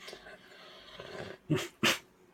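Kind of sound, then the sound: human body sound, coughing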